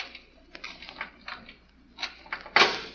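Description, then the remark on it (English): A door lock being worked open: a series of small, irregular metallic clicks and scrapes, ending in a sharper, louder clack as it gives way. No one speaks. “Now, both of you boys keep quiet while I work on this door.”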